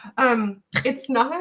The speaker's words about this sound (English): So, did you have something? No. Okay. I did clear my throat. I'm sorry.